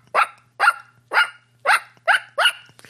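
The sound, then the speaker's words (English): A man imitates a dog barking, the way he barks back at dogs in his neighborhood: six sharp, loud barks in a steady rhythm with brief pauses between each, and no other talking. “Well, I have a habit of barking back, and I have a pretty good bark. You want to hear it? It goes like this.”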